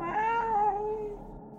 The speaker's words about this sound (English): Where am I now? Is that a cat?